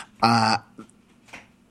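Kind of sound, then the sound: human body sound, coughing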